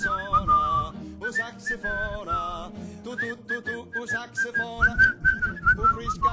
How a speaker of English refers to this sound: I don't know what they're saying, but it sure sounds Italian to me. Whistle along